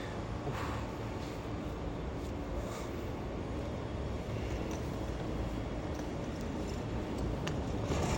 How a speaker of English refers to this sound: This is where I pass by a bus, but I notice the timing and I get to go behind it because I'm not a complete effing moron.